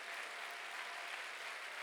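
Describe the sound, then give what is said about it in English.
An audience claps together, a dense, steady wash of many hands that stays even and unbroken for the whole moment, with no voices standing out above it. “I wish somebody clap your hands and thank Him that He's your lamb.”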